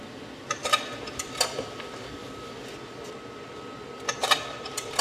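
Sharp mechanical clicks of a giant stereoscopic View-Master come in small clusters, a few near the start and more near the end, over a steady low mechanical hum with no voices.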